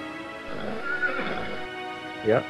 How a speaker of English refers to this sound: These are where the horses, they are the horse stables.